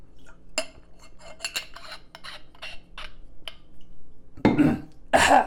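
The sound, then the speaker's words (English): Someone drinks water from a glass: a series of light clinks and taps, then two louder, breathy gulping sounds at the end. No one speaks. “I'm going to take a drink of water, and then we're going to talk.”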